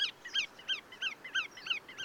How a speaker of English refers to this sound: Well, this one in particular is the black-tailed godwit.